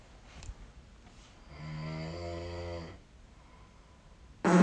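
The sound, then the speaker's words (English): A single drawn-out fart, a low, buzzy, fluttering rumble lasting about a second and a half, heard on its own without talk, followed shortly after by an abrupt loud burst of noise. “See, look how much closer that fart sound is.”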